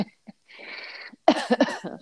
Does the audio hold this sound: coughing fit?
yes